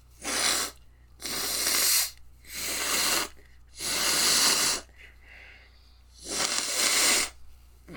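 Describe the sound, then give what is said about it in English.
Five forceful, noisy bursts of air blown through the nose into a tissue, each lasting about half a second to a second, with short pauses between them, fairly loud. “It's like, I don't have to blow my nose too much, but once I do blow it, I have to use like 2 or 3 tissues to get everything cleared out.”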